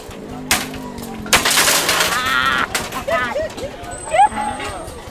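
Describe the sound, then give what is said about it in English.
Sharp cracking impacts as children smash the screens of old computers on broad stretches of mud strewn with shards of glass, plastic and metal, followed by a stretch of crunching, splintering noise, with children's voices calling out. “On broad stretches of mud, strewn with shards of glass, plastic, and metal, children are shattering the screens of old computers.”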